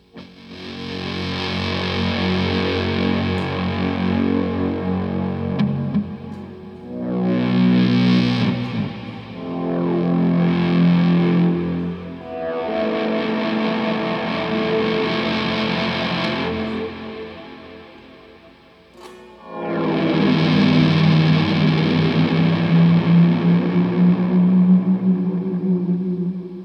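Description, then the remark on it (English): An electric guitar played through a fuzz effects pedal plays loud, thick, sustained chords in several long bursts separated by brief pauses, with a gritty, saturated tone and no voices. “I took the liberty of setting up a setting. Okay. Sounding up a sound.”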